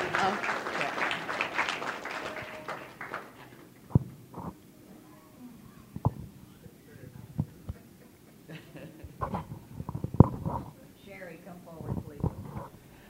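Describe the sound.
A crowd breaks into dense, steady clapping for a few seconds, then the applause fades into scattered thumps and low murmuring voices.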